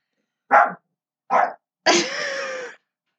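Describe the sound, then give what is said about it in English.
A dog barks twice in quick succession, then lets out a longer, drawn-out bark that trails into a whine. Fairly loud, with silence between the calls and no voices. “But it has a central, the podcast dogs, they're doing so good.”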